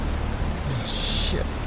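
Steady, dense hiss of storm rain pouring down without a break at sea on a sailboat, a loud rushing wash that fills the whole moment, with a brief brighter hiss rising partway through.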